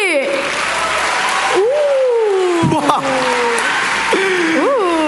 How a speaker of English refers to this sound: judging from the applause, I think we have a clear winner.